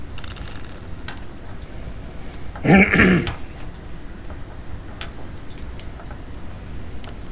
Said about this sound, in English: I like how every time I'm about to start, everybody sees a need to like cough or do.